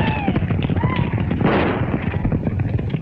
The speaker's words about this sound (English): Reaching flat land, they get closer and fire into the air.